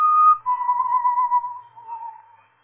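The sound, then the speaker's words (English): Someone whistles a short tune somewhere in a building, a clear pure tone that steps down in pitch and wavers before trailing off. No voices, just the lone whistle at moderate loudness. “The whistling was somewhere in the building.”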